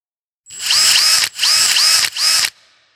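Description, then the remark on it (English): Spacesuit joints unlocking and releasing just outside a cave, in the reverse order in which they locked: three quick, loud bursts of high, whirring mechanical rotation, each with a ratcheting edge, separated by brief gaps before trailing off into a faint hiss. “The joints of the spacesuit unlock and release with several rotating clicks in the opposite order in which they locked.”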